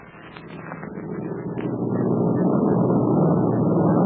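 A steady, low engine drone swells in over the first couple of seconds and then holds as a loud, continuous roar, like an airplane heard from inside the cabin.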